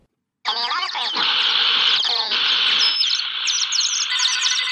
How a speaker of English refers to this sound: Get those blasted birds off my antenna!